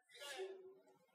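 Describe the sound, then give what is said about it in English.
A single quick sneeze, a sharp breathy burst that trails off into a short voiced tail. It sounds fairly faint. “Bless you.”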